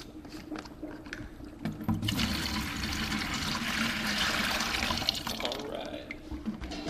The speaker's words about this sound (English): He opens a box containing those samples and pours them into four huge fermenters. All right, here we go.